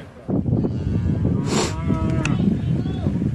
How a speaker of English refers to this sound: Here's a cow that's been burnt really bad.